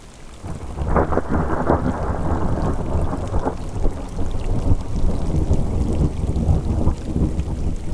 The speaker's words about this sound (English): I have come up here to experience the storm, the wind, the rain. I saw the gray clouds when I woke, remembered the giant ponderosa, and took the steep hike into the air that, as the morning came, grew colder. The breeze has turned to gusts.